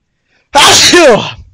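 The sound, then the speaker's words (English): A single loud sneeze bursts out suddenly after silence, a sharp explosive blast with a brief voiced tail that fades quickly. “Holy shit. Bless you.”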